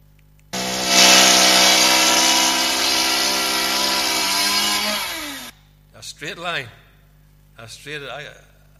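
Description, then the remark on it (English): A loud chainsaw, used instead of a circular saw for building work, roars steadily for about five seconds, its engine pitch dipping as it bites into wood, then cuts out; brief bursts of speech follow. “And it was very interesting to watch, because what we would use here, probably a circular saw, they were using a chainsaw.”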